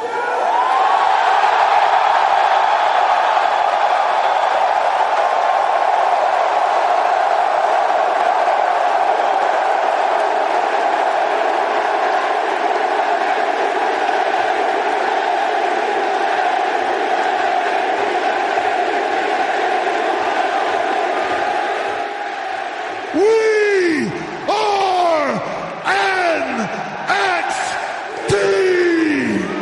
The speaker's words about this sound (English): That sound you heard at the end of Triple H's open was the sound of 15,000 plus screaming and cheering from the Barclays Center in Brooklyn, New York.